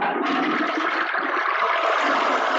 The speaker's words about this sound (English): And play that delightful flush sound on your way out.